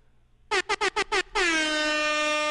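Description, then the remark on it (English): A loud air horn fires five quick staccato blasts, then holds one long, blaring note that sustains to the end. No voices are heard. “Can we get some air horns for the...”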